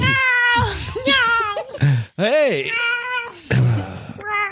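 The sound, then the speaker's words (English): A female cat meows loudly, several drawn-out, wavering meows in quick succession, with a short spoken interjection mixed in. “Sometimes she meows.”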